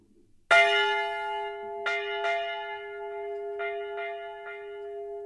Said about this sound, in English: Bells are loud. And in stereo.